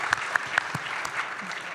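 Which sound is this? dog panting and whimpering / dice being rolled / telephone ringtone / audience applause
audience applause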